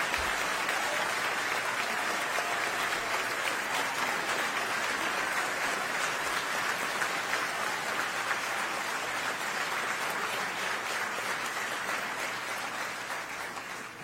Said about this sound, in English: But can we give the mayor another round of applause, please? This is what inauguration looks like.